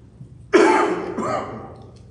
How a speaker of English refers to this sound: That, by the way, is an innocent cough. I did go to the doctor and checked it, and he said, I'm a very negative person.